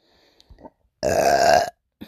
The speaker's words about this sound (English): Excuse me. Oh, sorry, I'm burping, you guys.